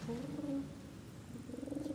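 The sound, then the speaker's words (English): A pigeon roosting in the rafters coos softly in a low, throaty warble, two rolling phrases with a brief pause between, sounding somewhat distant and echoey, with no other voices. “Could the distant pigeon roosting in the rafters please be quiet?”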